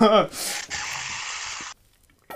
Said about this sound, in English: Let me just try and grab something to drink. Yeah, we did it. Let me just put the mic at the water. Oh god, I can hear him drink. Stay hydrated.